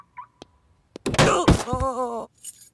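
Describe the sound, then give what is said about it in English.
The doors of an SUV clunk open and shut: a few sharp latch clicks, then heavy thuds and a rattle, followed by a wavering groan-like tone before a final soft knock. “Here's the keys to the SUV. You have to let go for me to take them back. I know. Let me just open the doors one more time.”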